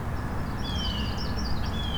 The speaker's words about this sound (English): It's a warbler. Red-winged blackbird. I think it was a yellow-rumped warbler, but I'm a little out of practice.